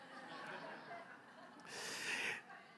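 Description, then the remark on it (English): A single short, breathy cough from a preacher pausing mid-sermon, moderately loud, preceded by a moment of quiet breathing and low background noise; nobody speaks. “That was a professional stall so I could cough.”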